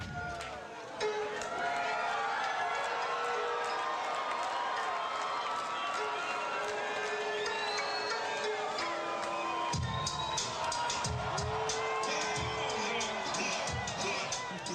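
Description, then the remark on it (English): A large crowd at a live show cheers loudly and continuously as a musician on stage plays a part, with whoops and high shouts rising above a dense roar of voices that stays intense for the whole stretch. “So, and to watch the crowd react like that,”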